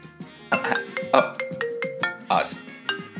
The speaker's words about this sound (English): I think we'll just let that one go to answer phone.